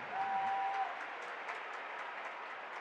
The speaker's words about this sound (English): Down 7, game 5, with game 6 in L.A. Crowd chanting at the officials. Jazz struggling right now.